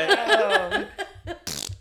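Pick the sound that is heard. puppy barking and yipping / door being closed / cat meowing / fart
fart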